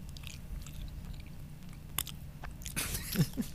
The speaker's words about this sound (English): I feel like there's a lot of effort in your chewing. There is.